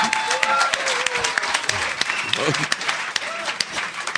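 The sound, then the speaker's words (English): An audience applauds a recited Hebrew Hanukkah blessing, a dense patter of many clapping hands with a few cheers and whoops rising over it, sustained and fairly loud throughout. “The fact that you applauded that is really, it's appalling.”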